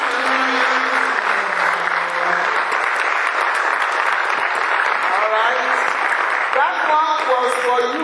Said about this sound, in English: You're clapping for yourself. Let's clap for our Father. Amen.